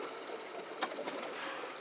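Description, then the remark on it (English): Two short, breathy whooshes of pilot whales exhaling at the surface, a fraction of a second apart, rising briefly above a steady wash of water and the noise of a small-engined boat. “I love that sound. You can hear them breathing and it's...”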